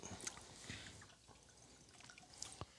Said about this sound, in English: I love the first pour. It's like glug, glug, glug, glug, glug, glug.